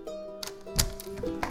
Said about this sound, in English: As if it was on cue, a door knock is heard. Is this that one miracle, or is that just absurd?